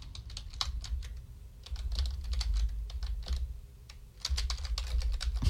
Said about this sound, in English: I'm just typing.